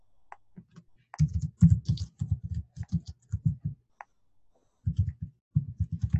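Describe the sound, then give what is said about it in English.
Rapid, uneven typing on a computer keyboard while searching for books, bursts of clattering keystrokes separated by brief pauses, with a few sharper clicks standing out. “I should be talking, but I'm like typing, trying to do find books.”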